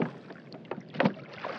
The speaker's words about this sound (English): I appear to be on some kind of makeshift raft, which is loaded with crates of strange plants and crustaceans. The captain of this vessel is a hooded figure who is using a large staff to paddle us along a great black river.